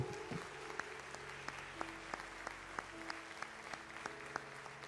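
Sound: audience applause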